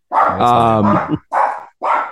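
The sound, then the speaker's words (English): A golden doodle dog barks loudly, as it does whenever an Amazon package arrives: one long, drawn-out bark followed by two shorter, sharp barks with brief pauses between them. “He's a golden doodle who thinks he's a Rottweiler.”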